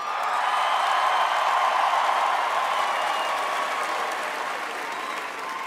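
A crowd at Cyber Rodeo applauds steadily for several seconds, a dense wash of many hands clapping at once, loud and even throughout before easing slightly at the end.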